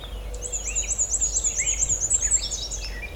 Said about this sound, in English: Black and white warbler. This bird's probably on territory.